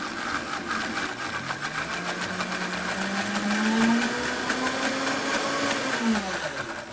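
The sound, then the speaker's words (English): A blender runs steadily, whirring as it purees beets with a little water, its motor pitch rising slowly then dropping near the end, with a dense buzzing hum throughout and no talking. “Just enough to get them moving into a nice, smooth, creamy puree. So we can let this puree for just another few moments here.”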